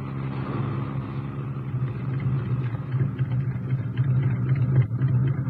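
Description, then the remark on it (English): A car engine hums steadily from inside the vehicle as it drives toward big gates, a continuous low rumble with a slight rise in intensity toward the end and no voices. “Yes, that's the real reason we took the car.”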